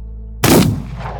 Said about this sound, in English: The second man lets out a strangled gasp, and the first man puts a bullet in his head.